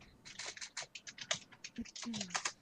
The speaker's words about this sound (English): Yeah, your keyboard clicky-clacks pretty hardcore through the...